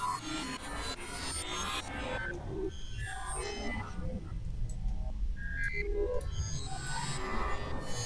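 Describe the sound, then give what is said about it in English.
Synthesizer tones, played by hands slamming randomly all over the keyboard while working the pitch bend at the end of a track, bend and glide up and down in pitch, wobbling erratically over a dense, rumbling musical backing that stays steady and loud throughout. “And it's a funny thing, because like you can kind of hear the up and down of going up and down the keyboard. Yeah. There's that pitch bend.”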